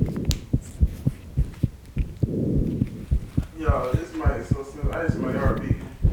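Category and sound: medical sound, heartbeat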